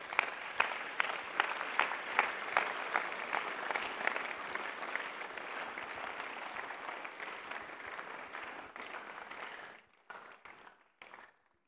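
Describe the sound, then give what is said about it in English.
An audience claps steadily, a dense crackle of many hands with a few sharper claps standing out, then the applause thins and breaks off into scattered claps at the end. “Oh, if you're going to clap, clap.”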